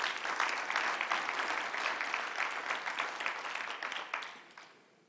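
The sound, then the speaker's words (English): An audience claps for the Lord in a dense, steady burst of applause that holds strong for about four seconds, then quickly fades away. No voices stand out above the clapping. “Yeah, go on, give the Lord a clap.”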